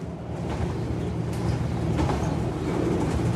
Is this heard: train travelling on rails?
yes